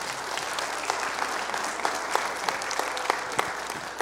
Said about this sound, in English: I recognized the worship team, but I didn't recognize that do the sound booth and do the media center. Can you give them a round of applause for all that they do?